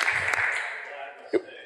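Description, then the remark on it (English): An audience applauds as performers leave the stage, in a dense, steady wash of clapping that slowly fades, with a sharper burst near the end and crowd murmur mixed underneath. “Give them one round of applause, folks, as they leave the stage here.”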